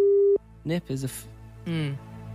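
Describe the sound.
A brief, steady telephone ringing tone as the radio station Spin calls a listener during a quiz, clear at the start, then cutting off abruptly as voices begin talking over the phone line.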